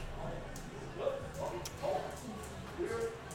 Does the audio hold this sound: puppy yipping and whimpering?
yes